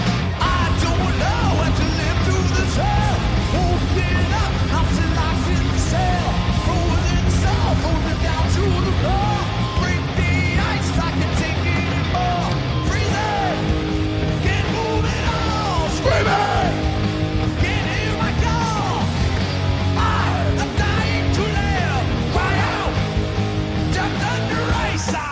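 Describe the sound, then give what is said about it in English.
A live band plays loudly and continuously for the whole stretch, with a dense wash of instruments and a crowd yelling and cheering throughout. “And we have a live clip of them playing it that we're going to put in right here so you can kind of hear some modern sauce.”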